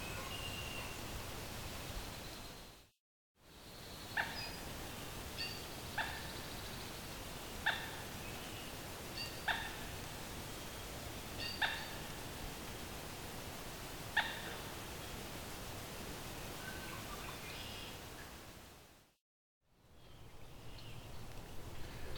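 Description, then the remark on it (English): A very loud, medium-sized marsh bird with a red face, dark body and yellow legs calls in a series of short, sharp clucks spaced a second or two apart, over a steady hiss of outdoor background noise. No one speaks. “very chicken-like bird.”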